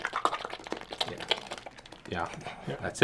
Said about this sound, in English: Yeah, this is where we first can hear what the aliens sound like. Oh, yeah. They make this weird clicking sound.